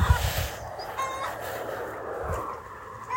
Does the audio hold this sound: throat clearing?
no